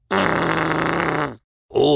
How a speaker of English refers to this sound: he started to fart again.